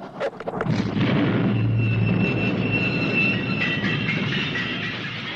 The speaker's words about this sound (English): Again, an amazing cut to a beautiful mm-hmm. shot of Peter O'Toole holding up the plunger on a, you know, explosive device and blowing up that train.